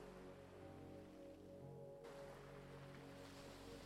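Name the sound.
ocean waves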